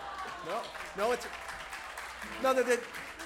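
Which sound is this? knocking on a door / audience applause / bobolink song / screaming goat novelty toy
audience applause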